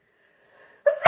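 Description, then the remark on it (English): A single sneeze: a faint, drawn-out wheezy inhale builds for most of a second, then breaks into a sudden loud, breathy burst at the very end. “Bless you.”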